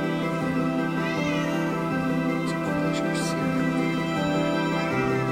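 A cat meows a couple of times, drawn-out rising calls about four seconds apart, sitting over a steady, dense tonal hum that runs underneath the whole time.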